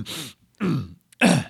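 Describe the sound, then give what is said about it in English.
A cough sound effect triggered by a cough button: three harsh, raspy coughs in a row, evenly spaced about half a second apart, each a loud throaty burst with a gravelly voiced edge, with short silences between them. “Perfect cough sound effect.”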